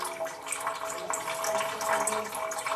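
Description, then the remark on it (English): Brown water pumped by residents from a street pump gushes steadily into a bucket on Lermontov Street in the village of Michurinsky, southern Russia, a continuous splashing, filling sound with no voices, the pour rising slightly in intensity toward the end. “On Lermontov Street, residents pump out the brown liquids by the buckets every day.”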